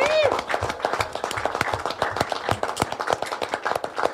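A round of applause from a group, with steady, dense clapping running throughout and a brief high tone at the start, moderately loud.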